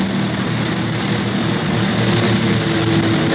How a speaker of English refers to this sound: Look, that other plane's out of control. He's going into a nosedive.